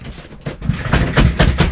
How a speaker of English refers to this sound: I really hate this chair. I've never noticed it. Now you've talked about it. It squeaks all the time.